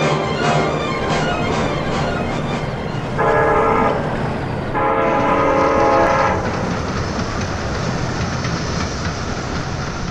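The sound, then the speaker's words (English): A train rolls along the tracks with a steady, loud rumble and clatter, sounding two long horn blasts midway as it slows toward a stop. No voices. “Hey, the train's stopping. Ain't stopped here 4 years.”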